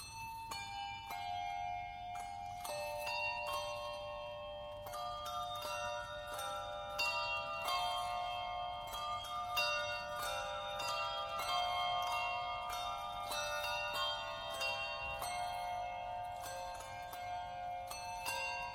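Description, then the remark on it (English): Bright bells ring in a steady cascade of overlapping tones, each strike shimmering and sustaining as part of Christmas music, loud with no voices. “And the moment those bells start, you can feel everyone in the audience just goes into a childlike state and feels beautiful.”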